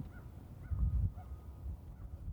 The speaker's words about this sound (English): We're not out in the middle of nowhere exactly, but you can hear my dog's footsteps, you can hear the wind, maybe a few birds. There's some crows.